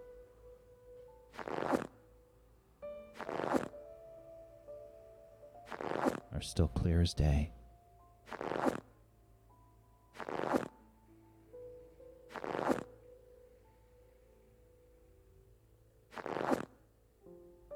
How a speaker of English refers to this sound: Sounds like two sets of footsteps.